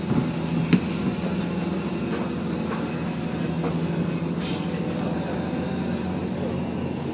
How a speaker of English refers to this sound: So, a lot of interesting sounds around on the train. You might not be able to hear them because I have my phone to my ear.